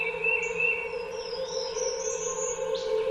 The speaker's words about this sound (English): Man, you know what? I think I'd prefer it without the music in the background. You know, just the bird noises, natural nature. That's all I need. Yeah. I could do with bringing that bird down a little bit though. It's a bit off-putting.